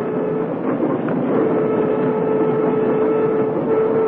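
A commuter train rolls steadily along the rails, a constant dense rumble with a faint sustained hum riding over it and soft rhythmic clatter underneath, unbroken with no voices.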